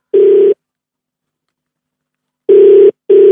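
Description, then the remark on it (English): A telephone ringback tone heard from the caller's end: a steady electronic burr sounding once, then a pause of about two seconds before a quick double ring. Clear and fairly loud, no voices. “All right, it's ringing.”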